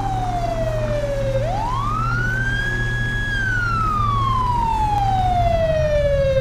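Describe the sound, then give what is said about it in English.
A loud police cruiser siren wails in a long, slow rise and fall, sweeping down, climbing back up, then gliding down again over a steady low engine rumble. “He still has his sirens on, but yet he's, like, not even...”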